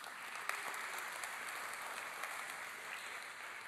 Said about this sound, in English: This is what you all are doing. So just, would you give yourself a round of applause?